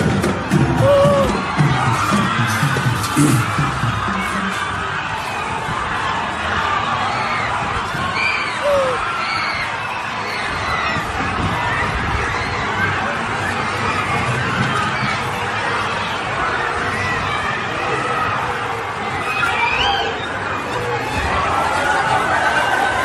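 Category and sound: crowd, crowd cheering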